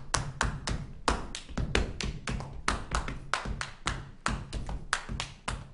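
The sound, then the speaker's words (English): Rhythmic body percussion of Juba dance, hands slapping thighs and patting together, with shuffling feet, in a steady repeating pattern of sharp, loud taps and dull thuds, with no voices. “Slapping thighs, shuffling feet, and patting hands.”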